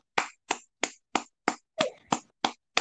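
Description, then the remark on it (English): Nine sharp hand claps in a steady, even rhythm, each a crisp smack with a quick decay, with no talking in between. “Sorry, I had to clap. I had to definitely clap.”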